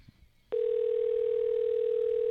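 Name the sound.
phone call ringing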